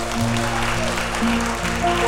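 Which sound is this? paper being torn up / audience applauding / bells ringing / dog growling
audience applauding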